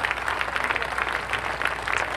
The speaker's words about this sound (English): So, yeah, clap sample. Yes.